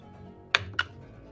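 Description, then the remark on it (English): A d20 die rolls across a hard surface, making two sharp plastic clacks about a quarter second apart, then settles into quiet. “Roll a d20 just so that I can decide how severe this is going to get.”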